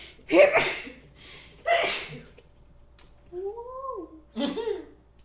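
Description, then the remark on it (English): Three sharp sneezes burst out a second or two apart, with a short voiced murmur between the second and third. “Bless you.”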